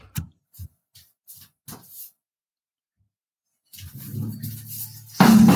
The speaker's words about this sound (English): I've just knocked a guitar over doing that, but okay.